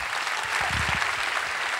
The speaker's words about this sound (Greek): Και τώρα θα δώσετε το πιο θερμό σας χειροκρότημα στο πιο παλιό από όλους, αλλά και στο μαέστρο μας, στα πλήκτρα και την καλλιτεχνική επιμέλεια,